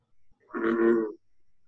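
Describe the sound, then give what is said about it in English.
A single deep, resonant call from a bullfrog giving the last bit of its song while competing with a second bullfrog, a loud low droning note that swells and fades over about half a second, with faint low rumbles just before and after. “Okay, so that's that first frog giving that last bit of call, like, I'm gonna get you, right?”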